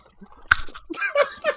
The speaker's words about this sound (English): Like, let me eat a bite of this right on the microphone. No, no. This is a serious crunch. This is good radio. This is a serious crunch.